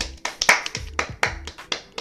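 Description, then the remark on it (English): Brief applause of about eight sharp hand claps in a steady, fairly quick rhythm, moderately loud with no talking over them, like one or two people clapping, given as a round of applause in praise of a rapper. “Let's give a round of applause for that man.”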